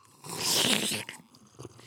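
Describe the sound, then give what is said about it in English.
A noisy slurp of a drink from a festive Darth Vader mug, one loud airy suck lasting under a second, followed by a few quieter wet mouth sounds. “Got my Darth Vader. Let's have a slurp.”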